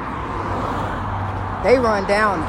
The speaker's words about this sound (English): It's gonna get a little noisy, because I'm telling you, it's the main road, honey. I'm gonna put this right here on pause for a moment, because this traffic, it don't stop going on this right here, this highway of life. They run down it.